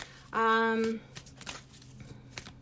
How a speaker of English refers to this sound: And I'm shuffling the Soul Trees deck by Allison Williams Yee.